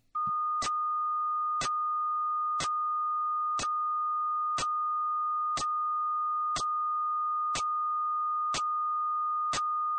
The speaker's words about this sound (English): Again, many people hear the steady sound of the tone above the static, but like before, the static is just static.